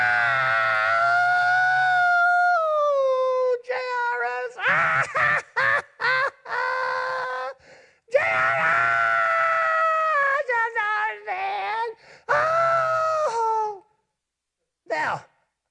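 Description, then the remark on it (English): A man's voice imitates the loud mournful wailing of the mourners at Jairus' house, drawn-out cries with gliding, falling pitch, broken by short choppy sobbing bursts and brief pauses, ending in a short final cry. “He said they were wailing. Ah! You know how to yell, wail?”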